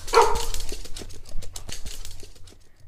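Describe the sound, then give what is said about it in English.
A giant three-headed guard dog lets out one deep bark, followed by a scatter of soft thumps and clicks that fade toward the end. No one speaks. “A giant three-headed dog trained specifically to protect the gate to the underworld, and he was distracted by a steak.”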